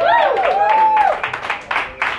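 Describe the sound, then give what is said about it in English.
A brief voiced cheer rises and falls, then gives way to scattered, irregular audience clapping, a handful of sharp bursts rather than full applause. “Wait till I tell a joke and then clap.”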